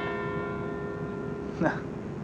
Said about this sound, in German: Na, ist die Glocke im Hintergrund.